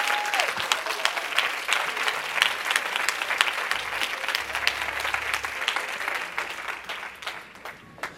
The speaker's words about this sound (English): I'm done. Clap your hands. I'm done. I'm out of time. Clap those hands for Jesus. Come on.